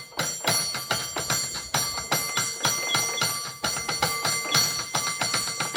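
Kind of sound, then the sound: signal or alarm, cable car bells ringing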